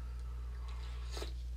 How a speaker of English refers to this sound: That was a little coffee sip.